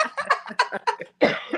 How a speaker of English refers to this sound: But still, forgive me. I'm still kind of under the weather. I'm still coughing like crazy.